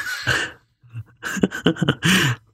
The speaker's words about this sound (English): All right. I'm going to clear my throat a little bit.